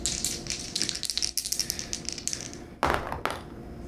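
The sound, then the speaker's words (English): Two dice are rolled to decide a fight in a game, rattling with quick, light clicking for a few seconds, then landing with two sharper clattering knocks near the end. No voices are heard. “Okay, if you fight on, roll 2 dice, adding 2 each for weapon use and determined.”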